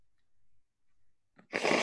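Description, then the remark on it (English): Someone blows their nose: after a quiet stretch, a brief puff is followed by a loud, forceful, hissing blast of air that runs to the end, with no talking. “When I was a kid, oh my God, let me blow my nose, please.”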